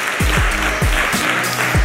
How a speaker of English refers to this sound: Can we give you a round of applause? Thank you. Thank you.